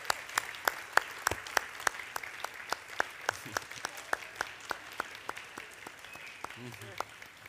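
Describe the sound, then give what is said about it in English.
Steady, evenly paced hand clapping at a church service as a guest speaker and his family are welcomed, with one of the family clapping for herself: a run of about twenty sharp, crisp claps at a brisk rhythm, with faint voices murmuring underneath. “She claps for herself.”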